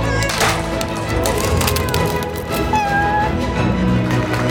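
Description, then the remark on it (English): A thin meow from a kitten up in a tree rises briefly about midway, nearly buried under a loud, busy wash of crackling, creaking noise that fills the whole stretch. “Sir, my kitten is in that tree.”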